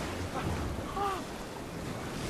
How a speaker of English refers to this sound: he's turning on the water. I don't know why he did that, but now Ant-Man is in trouble. He's running. It's like an avalanche of water.